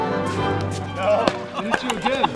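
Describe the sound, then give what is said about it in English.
Hollow pickleball pops from paddles striking the ball, four or five sharp, irregularly spaced hits, mixed with people calling out and chattering throughout. “It is the sound of pickleball, which has, in the blink of an eye, become America's fastest growing sport.”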